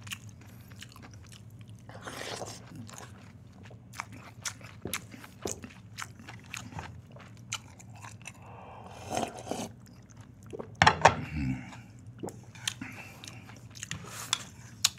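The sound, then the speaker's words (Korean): Wet chewing and biting sounds of someone eating lunch repeat in irregular bursts, with crisp clicks and a few louder crunches over a low steady hum. No one speaks. “야, 이걸로 점심 끝났다, 나는.”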